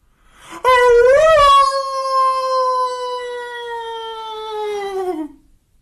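A dog's single long, mournful howl of grief over a parrot's death rises sharply, wavers briefly, then holds a steady, slowly sinking tone for about five seconds before fading out. It is loud and alone, with no talking.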